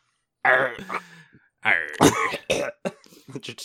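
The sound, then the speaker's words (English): A person puts on a raspy, hacking cough in the style of a heavy smoker, imitating a smoking pirate: a strained, voiced wheeze followed by a string of rough, sputtering cough bursts, fairly loud. “just cough. That's all you need to do.”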